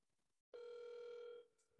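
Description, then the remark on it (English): A single steady electronic phone ring tone sounds clearly for about a second after a brief silence, a sustained buzzy tone with bright overtones, then cuts off abruptly. “Oh, we got it ringing. Can you hear it? Yeah, I heard it ring.”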